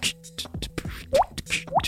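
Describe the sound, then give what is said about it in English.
A water drop sound effect plays several times, each a quick bright bloop that slides upward in pitch, layered over low electronic tones and soft rhythmic clicks. “I have just the water drop mostly.”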